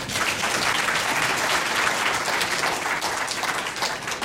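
An audience breaks into steady, sustained applause welcoming a doctor giving an evening talk on preventing falls, a dense wash of many hands clapping at an even loudness for several seconds, with no voices standing out.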